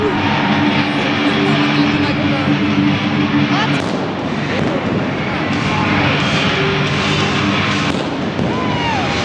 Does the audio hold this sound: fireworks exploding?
yes